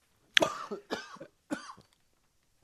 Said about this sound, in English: So, audience, I have edited out 9,000 coughs that I have coughed into the microphone on.